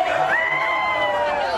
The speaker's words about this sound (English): Raucous crowds, hard partying, and no masks. Exactly what authorities feared would happen at the Super Bowl. If the Super Bowl turns into a super spreader, it will be because of scenes like this.